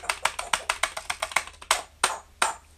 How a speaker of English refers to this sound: Lily's imitating me tapping the keys